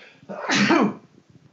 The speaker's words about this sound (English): Sorry, I sneezed. Bless you. That's the second sneeze on this episode.